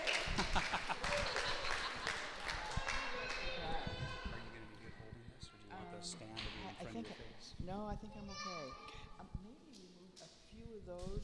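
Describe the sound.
An audience claps together in a dense, steady burst for a few seconds, with voices talking over it; the applause thins out and speech carries on afterward.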